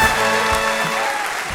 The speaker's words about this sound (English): insert applause and cheers and music here.